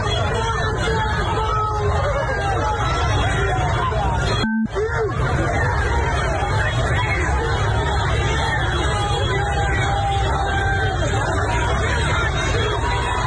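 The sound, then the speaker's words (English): A large Queer Liberation March protest crowd at Washington Square Park in Lower Manhattan fills the air with dense, overlapping shouting and chatter at a steady, loud level as police shove people to the ground, use pepper spray and make arrests, broken only by a split-second dropout partway through. “As we listen here, the cops shoved people to the ground, used pepper spray, and made several arrests.”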